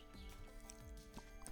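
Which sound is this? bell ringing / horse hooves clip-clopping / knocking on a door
horse hooves clip-clopping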